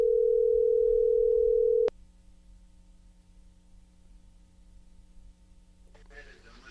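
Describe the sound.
A steady, loud telephone dial tone drones for about two seconds, then cuts off with a click into a quiet, hissing phone line, where a voice faintly begins speaking at the end.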